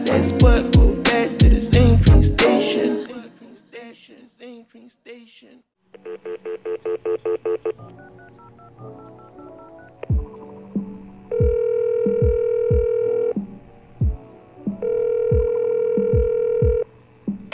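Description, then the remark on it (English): A burst of quick telephone dialing beeps calling the Bedroom Frequencies hotline, then steady ringing tones in two long repeated stretches, with low rhythmic thumps underneath and a busy, clattering start before the dialing. “Hi, you're through to the Bedroom Frequencies hotline. We can't take your call right now, but please leave your musical malfunction after the tone and we'll get back to you with the perfect musical solution.”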